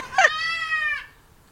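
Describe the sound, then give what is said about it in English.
A single thin, high-pitched bleat from a newborn South African Boer meat goat kid, about an hour old, on a farm, lasting about a second, with a slight waver before it trails off into quiet. “These are South African boar goats and they are a meat goat.”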